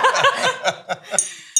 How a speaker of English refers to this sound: Look at you, ding, ding, ding with the wine glass.